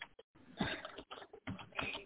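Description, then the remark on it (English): Rapid, uneven keyboard typing, a run of clicky keystrokes broken by brief pauses, with no voices. “I hate typing in my stupid pen.”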